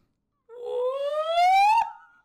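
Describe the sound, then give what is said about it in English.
A person's voice imitates a howler monkey scream: one long, loud, rising wail with strong harmonics that climbs steadily in pitch, cracks abruptly near the top, then trails off. “So howler monkeys get their name because they scream.”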